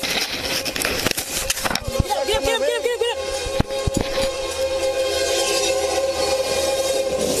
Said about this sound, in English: She literally pulled him off the tracks as the train roared by. Wow. It did barely clip his leg.